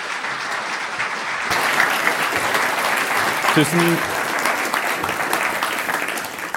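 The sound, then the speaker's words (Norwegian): A warm round of audience applause welcoming a guest speaker, a postdoctoral researcher from the University of Oslo: steady dense clapping that fills the whole clip at an even, fairly loud level, with a brief low tonal murmur partway through. “Så gi han en varm applaus.”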